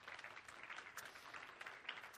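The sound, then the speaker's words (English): People in a church clapping together for those who decorated the church, a steady, dense patter of many hands that holds evenly for a couple of seconds at a fairly soft level, with no voices over it. “we have some wonderful people came in and decorated the church, which we can clap for them.”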